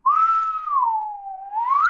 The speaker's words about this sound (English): That's my whistle. You got it. That's it.